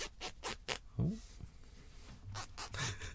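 A long zipper being unzipped, heard as a run of quick rasping bursts, a short pause with a soft thump, then a few more rasps. No one speaks.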